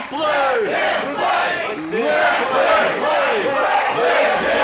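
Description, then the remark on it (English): A crowd cheers and shouts in a loud, continuous roar, with many overlapping voices yelling in rising and falling waves for several seconds. “The crowd seems to agree with me.”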